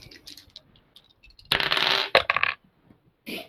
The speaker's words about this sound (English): I'm throwing away these dice. I rolled a 94.